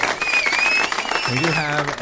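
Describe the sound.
A small crowd at the bar Barrel 239 cheers and hollers in a steady wash of noise, with a high whistle early on and a single voice whooping loudly near the end.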